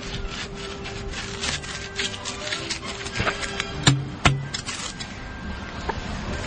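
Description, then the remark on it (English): A potato is crammed down the inch-and-a-half pipe barrel of a potato musket, or potato cannon, with a long dowel, with continuous scraping, rubbing friction and a few sharp knocks and thumps along the way, steady and fairly loud, with no voices. “Cram the potato down the barrel.”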